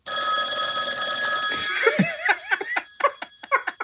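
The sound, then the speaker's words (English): A telephone bell rings steadily and loudly for a moment, then breaks off into a quick run of choppy, giggling bursts with no talking. “Pick it up. Answer it. Oh, baby, just ignore that phone call, baby.”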